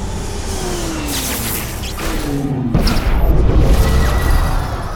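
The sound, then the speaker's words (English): In a film scene, a jet engine whines and drops in pitch over a low rumble, then jets crash and burst into a loud, sustained fiery explosion roar that slowly fades, with no voices. “Jets crash. Fiery explosion.”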